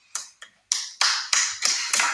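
A nearly two-year-old girl claps her hands about seven times, soft and uneven at first, then steadier and louder, each clap a sharp slap with no talking.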